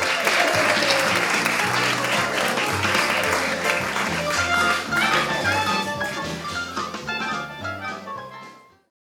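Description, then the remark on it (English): Audience applause at the close of the Factory Theater Hour, dense and sustained, claps over a band of upbeat music with a steady bass line, both tapering off and fading out in the last seconds. “Let's hear it for him.”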